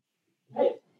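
A dog named Marty, wanting in at the door, lets out one short, sharp bark, clear, with no voices and only quiet around it.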